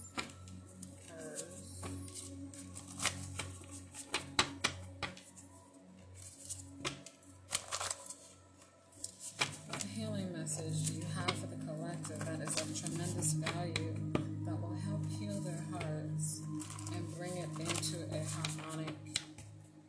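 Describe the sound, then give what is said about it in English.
A deck of cards is shuffled, with bursts of crisp, rapid riffling clicks and snaps throughout; a voice talks underneath during the second half. “We're going to grab a jar card real quick. We're going to shuffle first. We're going to shuffle up a bit.”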